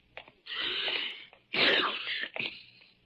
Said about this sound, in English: Ah, confound it. I do not have a cold. A man can sneeze, can't he?